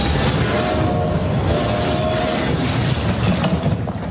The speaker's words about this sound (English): we actually had someone ask us to actually have a train crashing sound